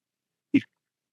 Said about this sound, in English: Did you hear that, everyone? That poor fella sneezed.